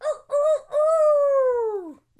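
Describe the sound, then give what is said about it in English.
A rooster crows loudly: two short clipped notes, then one long drawn-out call that slides downward and breaks off, heralding the Red Rooster, a WWE wrestling character. No voices are heard. “Red Rooster?”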